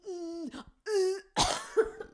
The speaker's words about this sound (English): And you made yourself genuinely cough?